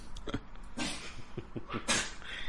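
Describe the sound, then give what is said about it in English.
A dog breathes heavily, with two long breathy huffs broken by short snorting, hiccup-like catches, all fairly quiet with no talking. “Doggy's heavy.”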